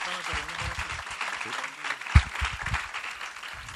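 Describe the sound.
An audience in a church applauds, a dense, steady wash of clapping that lasts the whole few seconds, with voices calling out underneath and one sharp louder thump partway through.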